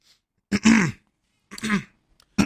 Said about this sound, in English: I had to clear my throat.